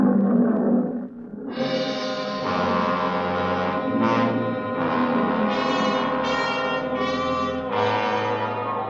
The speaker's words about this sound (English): Nobody answered me but an old Libyan lion.